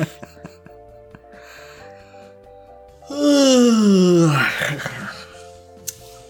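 A long, loud yawn into the microphone, rising then sliding down in pitch like a drawn-out moan, breaking off into a breathy exhale with faint background noise around it.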